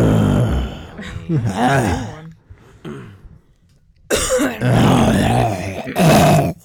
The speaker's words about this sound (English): I was just actually clearing my throat.